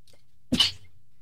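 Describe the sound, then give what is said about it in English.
A single sharp sneeze bursts out, a quick low intake followed by a bright, hissing blast that fades within a fraction of a second against a quiet background. “Bless you”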